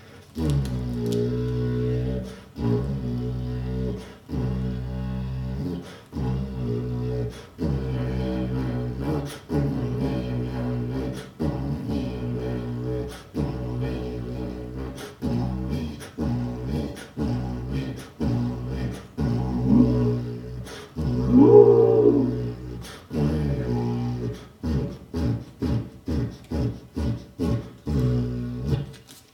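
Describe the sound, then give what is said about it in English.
A homemade didgeridoo, about 4 feet long and made from paper-towel cardboard tube rolls, drones with a deep, buzzing tone, played in steady rhythmic pulses, with a louder, growling swell partway through. No one speaks. “Here is a didgeridoo I made from cardboard tube rolls from paper towels.”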